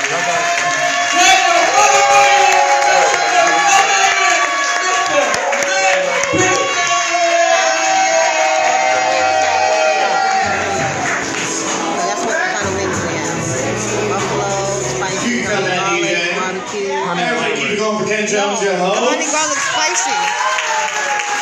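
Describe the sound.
A loud crowd cheers and claps steadily for about twenty seconds after being asked to clap their hands and make some noise, with many voices whooping and shouting over a dense, continuous wash of applause.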